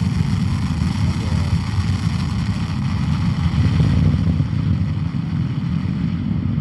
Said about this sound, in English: 3, 2, 1. Ignition. Lift off of the Falcon 9 rocket with Jason 3. Continuing the mission for global insight into ocean sea surface height and its effects on our planet.